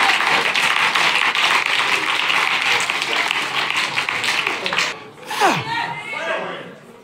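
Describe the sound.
An audience claps steadily, a dense wash of many hands for about five seconds, before the applause thins out and a voice calls out over the last of it.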